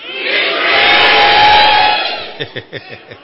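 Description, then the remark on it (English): A church audience roars the word "increase" loudly together at the preacher's call, a dense sustained wall of crowd shouting that swells for about two seconds, then fades into a few scattered, rhythmic bursts of cheering. “Let the walls of your house and of your office feel the roar from your spirits.”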